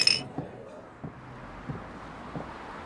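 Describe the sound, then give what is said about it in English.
A single bright clink of glasses in a toast rings out at the very start and fades quickly. Soft, muffled thumps and low background rumble follow. “In fact, I toast to you for being ready.”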